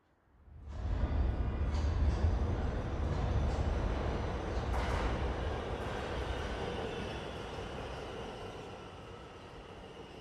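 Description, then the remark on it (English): A train travelling to the mountains rolls steadily along railway tracks with a deep, continuous rumble and rattle, rising in quickly and then easing slightly in loudness as it carries on, with no voices. “He put on his best clothes, took a small bag, went to the station and got into the train.”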